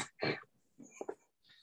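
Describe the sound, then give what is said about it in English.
A person's voice imitates a dog with a handful of short, yappy barks and yips in an uneven sequence, fairly quiet, with no ordinary talking. “That was a really great dog impression”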